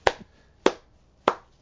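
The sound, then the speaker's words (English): Three sharp hand claps at a slow, steady pace, each a crisp slap with a brief ring-off, and quiet gaps between them. Nobody speaks. “That's claps for you, baby.”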